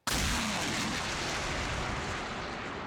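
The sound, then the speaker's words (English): A huge explosion boom hits abruptly and swells into a loud, dense roar of rumble and hiss that barely fades over the next few seconds, with no voices. “It sounds like a fucking nuke going no, off.”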